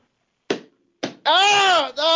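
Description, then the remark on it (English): Two sharp, hollow smacks about half a second apart as a pair of shoes, just taken off, are banged together, followed at once by a loud, sustained vocal cry that wavers in pitch. “You just said I got to take off my shoes and bang them after together.”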